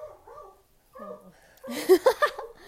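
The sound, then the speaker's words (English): A dog in a living room lets out wavering, whiny howls, then breaks into three loud, sharp barks in quick succession, with no one talking. “My dog's going ham in the living room. He is just howling at who knows what, and it's annoying.”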